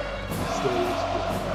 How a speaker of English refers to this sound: And listen to that crowd. They didn't forget.